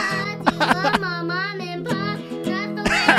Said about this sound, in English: Wait, are we going to actually listen to a song of, like, a toddler singing? Yes. While watching it.